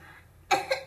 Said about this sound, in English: and she is coughing.